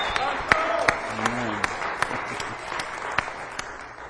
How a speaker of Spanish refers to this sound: Vamos a dar un aplauso caluroso de Cornerstone a nuestro hermano